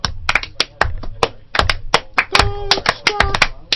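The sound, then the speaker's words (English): Sharp hand claps sound in an uneven, unhurried series, roughly a dozen and a half loud smacks, with a short vocal cry rising over them partway through. “Now they deserve slow clap.”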